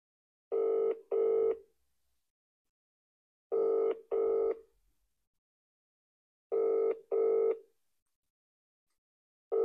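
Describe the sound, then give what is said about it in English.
A phone call to someone rings out: a steady double-pulse ringback tone repeating every few seconds, about three pairs of buzzy rings with silence between and nobody answering or talking. “Bell him.”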